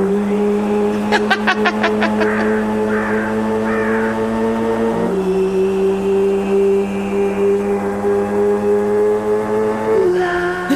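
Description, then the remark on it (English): A little red scooter's engine hums loudly on a suburban street, its pitch stepping up in a couple of sharp revs, with a few raspy bird-like caws briefly cutting through early on. “the original one was like a motorcycle, right? So is this going to, and so this is Light, this is so it's light. A scooter.”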